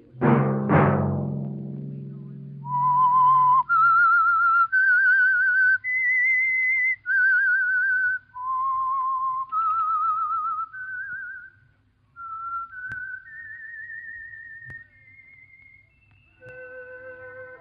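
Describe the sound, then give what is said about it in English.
A lone whistled melody of sustained, clear notes rises and falls in a slow, eerie tune, preceded by a brief resonant chord at the start, loud with no talking; the signature tune of a radio program sponsored by an oil company. “Let that whistle be your signal for the Signal Oil program, The Whistler, each Wednesday night at this same time”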